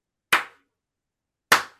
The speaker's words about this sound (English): I don't know if the claps are coming in. They are.